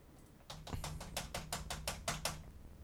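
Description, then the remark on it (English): Rapid clicking of the keys of a Windows computer keyboard, about a dozen sharp taps in quick succession, fairly clear, with a faint low hum underneath and no talking. “Okay, I guess you can touch that key.”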